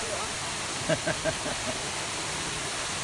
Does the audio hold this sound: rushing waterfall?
yes